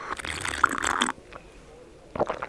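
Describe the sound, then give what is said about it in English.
A noisy slurp as someone sips a hot mulled Lemsip, followed by a brief quiet pause and then a shorter second sip or swallow. “Yeah, and a little pause there to allow you to breathe after that hilarity. and for me to take a sip of mulled lemsip.”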